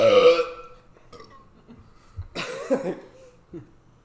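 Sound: burping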